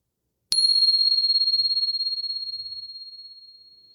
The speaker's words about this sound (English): And here comes the bell.